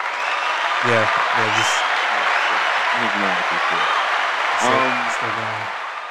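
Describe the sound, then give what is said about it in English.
A loud round of applause, a dense, steady wash of clapping that lasts the whole six seconds, with several bursts of shouting or cheering voices rising over it. “Matter of fact, can you do a round of applause for that?”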